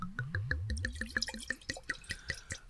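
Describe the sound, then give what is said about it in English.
Smith Story rosé wine glugs from a bottle into a glass in the morning, in quick, rhythmic pulses, the pitch rising as the glass fills. The pour is clear, with no voices. “A rosé pour this morning from Smith Story.”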